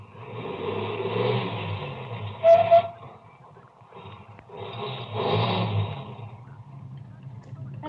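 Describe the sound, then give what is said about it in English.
A car engine rumbles, revving up and easing off twice with a brief high squeal in between, as a car that had passed slows down, stops, turns around and drives back toward the listener. “Ahead, the car that passed me slowed down and it also stopped. Then turned around and came back toward me.”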